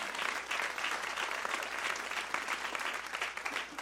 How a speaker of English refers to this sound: Come on, clap your hands if you believe in him.